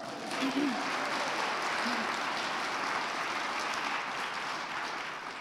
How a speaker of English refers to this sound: And we are out here in negative degrees, so I want us to clap it up for that.